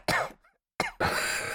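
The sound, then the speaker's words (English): Two sharp, harsh coughs from a man covered in smoke, separated by a brief pause. A loud, steady hissing noise follows and continues to the end. “And he breathes out a bunch of smoke, and he is still just sitting there, and the smoke all covers him and then starts to kind of dissipate, and he coughs.”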